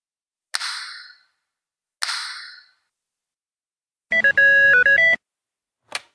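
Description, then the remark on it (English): Two airy whooshes, then a short, bright ringtone-style notification bell chime playing a quick electronic melody, followed by a soft click. A loud notification sound effect with no voices. “Don't forget to turn on that notification bell.”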